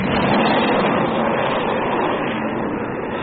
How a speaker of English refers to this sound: And what's that? Sounds like a plane of some kind.